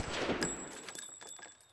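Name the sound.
gunfire shots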